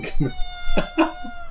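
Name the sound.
cat meowing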